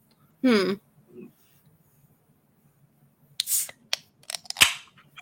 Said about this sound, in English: I got to crack open a nice BrewDog Cannon Blast, courtesy of my friend DK2S_Sweet.